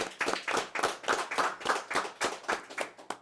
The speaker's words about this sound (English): Can we clap it up for that? That's super fire.